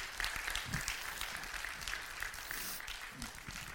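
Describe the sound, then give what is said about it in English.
An audience claps steadily during a morning sermon, a dense wash of many hands with a few sharper individual claps standing out, sustained at an even loudness throughout. “Put your hands together and let the Lord know you're hearing the voice of God.”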